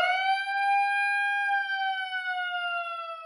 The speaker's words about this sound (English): First, give me the siren.